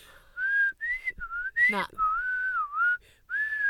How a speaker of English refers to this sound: Bad whistling. I don't love a whistle at the best of times, but if you can't whistle in tune, get out. Go.